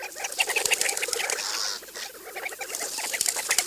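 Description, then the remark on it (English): A male desert bird's wings flap as it flies to a shallow water hole in the cool desert morning: a dense, rapid flutter of soft beats, steady, with a brief breathy whoosh partway through and no talking. “In the cool of the desert morning, the male flies up to 20 miles to a shallow water hole, then wades in up to his belly.”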